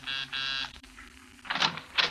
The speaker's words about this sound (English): I made a quick stop at the central office, and 20 minutes later, I was pressing a hotel buzzer.